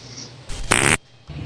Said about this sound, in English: That's the classic, especially if you're talking about farts like we were. You got to play, hey, this fart.